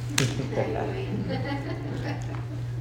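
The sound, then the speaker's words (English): A single sharp sneeze bursts out near the start, followed by faint murmuring voices over a steady low electrical hum, during a Wednesday night Bible reading gathering. “Bless you,”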